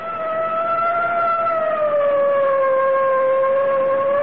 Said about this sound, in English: I guess it's time to sound the siren. Here goes.